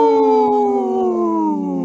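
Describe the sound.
A person imitates a wolf howl, a single sustained tonal wail that slowly slides downward in pitch, loud, with no other sounds around it.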